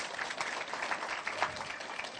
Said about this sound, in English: Love a good clap.